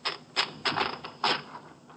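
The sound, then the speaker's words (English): Crisp mechanical clacks of a typewriter as someone types a phrase on an inserted sheet of paper, a few keystrokes in an uneven rhythm, moderately loud with no voices. “Gainsley could have typed that line to check the typewriter.”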